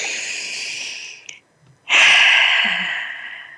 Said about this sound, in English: So let's take one more breath together.